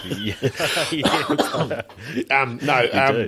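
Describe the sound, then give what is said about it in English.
A person coughs repeatedly in short, rough bursts, fairly loud, with voiced, throaty sounds between the coughs and no clear pauses, after something went down the wrong way. “It's, I've got a cough.”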